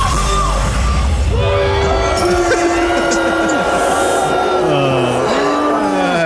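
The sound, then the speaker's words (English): A large concert crowd roars continuously, with long, sustained low voices rising and falling in pitch above the dense noise, like drawn-out boos ringing through a packed audience, as many fans boo a singer who has started to sing. “The headline will say he got booed off the stage, however, I'm not buying it, but there definitely was some heavy booing.”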